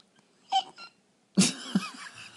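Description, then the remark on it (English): A person imitates a sheep's bleat with their mouth: a short nasal bleat, a pause, then a longer, wavering bleat, moderately loud. “That's a mouth. That's a sheep.”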